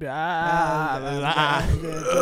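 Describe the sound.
A person lets out a loud, strained scream imitating a goat, a shaky, wavering bleat that holds for about two seconds before cracking and rising again.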